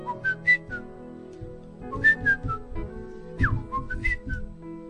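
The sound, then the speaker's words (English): A person whistles a short melody imitating a bird's song, in three bright phrases of quick rising and falling high notes, with a low murmur of background noise underneath. “I know that they say birds sing, but I never knew that they do actually sing melodies, serious melodies. You know, a bird would do like.”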